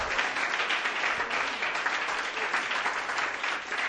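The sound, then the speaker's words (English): An audience at a church service claps together as a clap offering to the Lord, a dense, continuous burst of applause, many hands overlapping into a steady crackling roar that holds at an even, moderate level throughout. “Give a clap offering to the Lord right now.”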